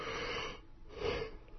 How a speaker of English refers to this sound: Boy, you're boring yourself even with a yawn. Making myself tired.